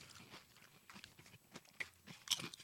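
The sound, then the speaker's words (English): Kettle-cooked potato chips crunch in a run of irregular, crackly bites and chews, fairly quiet, with no talking. “I love me a kettle cook, so do you. Well, I like a chip that's got crunch.”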